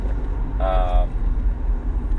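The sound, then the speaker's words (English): A steady low rumble fills the inside of a moving car, with road and engine noise throughout and a brief tonal whine or hum rising for about half a second midway. “We're just talking about life in the car.”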